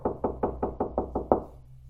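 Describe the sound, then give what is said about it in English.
A rapid series of seven knocks on a door, evenly spaced and fairly loud, with the final knock the hardest before a short decaying echo and quiet. “Knock, knock, knock. Who's there?”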